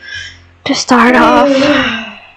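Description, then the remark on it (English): A fairly loud yawn: a sharp intake of breath followed by a long, voiced exhale that slides downward in pitch and trails off after about a second and a half. “Yawning up a storm here.”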